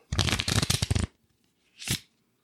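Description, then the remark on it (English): A quick riffle of playing cards being shuffled, a dense burst of rapid flicking lasting about a second, followed by a brief soft whoosh as the deck is squared up. “Give it a little shuffle real quick, just a little.”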